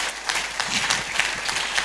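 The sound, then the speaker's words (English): A church audience bursts into steady applause, giving the Lord a clap for a woman's life: dense overlapping claps forming a bright, sustained wash of sound that holds an even level for the full couple of seconds, with no voices standing out. “Give the Lord a clap for her life.”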